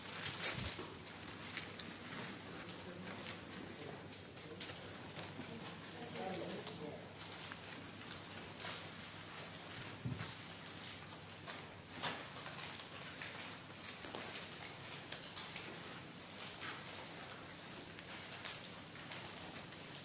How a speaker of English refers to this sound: Quite interesting listening to the rustling. It is almost as if there are some birds flying around.